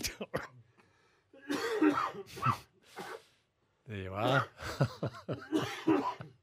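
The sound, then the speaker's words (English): A person coughs and clears their throat in a series of rough, harsh bursts, fairly loud, with a voice briefly speaking between the fits. “Talking of coughing, this one's out.”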